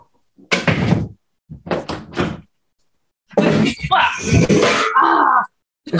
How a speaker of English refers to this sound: Okay. Sorry. I kicked over a chair. Oh, God. Okay. Are you okay? Foot hurts, but I'm okay.